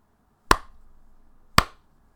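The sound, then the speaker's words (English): Two sharp, bright hand claps spaced about a second apart, a deliberate slow clap with a short ringing tail after each and no voices. “That was a slow clap just for you, but...”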